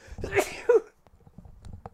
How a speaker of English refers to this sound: I've got a cold. I don't even understand. That's the second time I've sneezed.